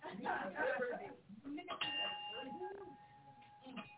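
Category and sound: signal or alarm, bell being rung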